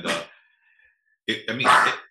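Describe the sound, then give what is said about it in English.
A small dog named Quinny sneezes: one sharp, breathy snort, a quiet pause, then a quick pair of harsh snuffling bursts in succession. “My the little dog sneeze.”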